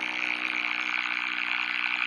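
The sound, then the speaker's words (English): A foghorn sound effect: one long, steady, brassy blast with a rich low drone, holding at an even loudness for about two seconds with no voices. “That's our foghorn Trump.”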